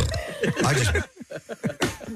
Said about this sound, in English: Oh, I think I was laughing at you saying zoinks and it came out as a burp. Zoinks! It was like you were at home and the way you belch or fart at home is decidedly different.